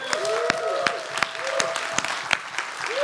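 A crowd in a church claps steadily and loudly, with sharper individual claps standing out from the dense patter and a few rising vocal whoops mixed in.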